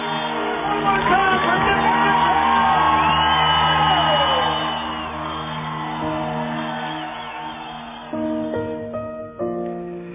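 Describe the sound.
A large crowd cheers and whoops loudly at a race finish line on Leahy Drive, voices layered into a continuous roar with scattered shouts and yells, fading slightly before a few sharper calls near the end.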